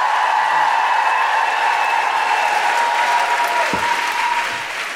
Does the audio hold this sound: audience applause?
yes